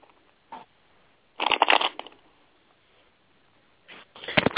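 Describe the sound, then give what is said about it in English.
Tarot cards being shuffled, in two bursts of crisp riffling with a short tap before each, separated by a quiet pause; no one speaks. “While she's shuffling, I'm a butt in for a minute.”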